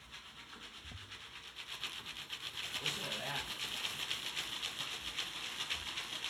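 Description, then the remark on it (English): A steady, bright hiss of sizzling grows louder and more rhythmic as a Jiffy Pop popcorn foil pan is shaken back and forth, with a brief spoken remark over the scraping rustle. “Oh, it's starting to sizzle.”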